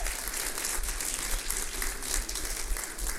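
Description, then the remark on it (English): Steady, sustained applause from an audience, a dense wash of many hands clapping at an even level throughout, with no voices standing out. “Give them a big hand.”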